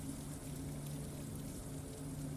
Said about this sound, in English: The sounds of the rain padding on the sill and the sounds of the trickling streams of water soothes you